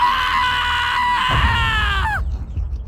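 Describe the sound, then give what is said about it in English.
A man lets out a single loud, wild scream of pain, held strained and steady for about two seconds before breaking off with a sharp downward drop in pitch. “Then he quivered and shook, and finally allowed himself to let loose a wild scream.”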